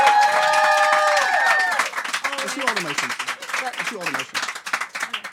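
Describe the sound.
An audience at a live show of songs and stories bursts into loud cheers and high whoops over steady applause for the person who let them into the venue, then the clapping carries on, thinning slightly, beneath people talking.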